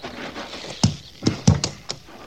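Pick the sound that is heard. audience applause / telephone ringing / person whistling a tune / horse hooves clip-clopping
horse hooves clip-clopping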